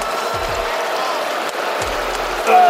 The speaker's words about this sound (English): Can we stop all the booing and let these guys play? It's got no class. It's not who we are.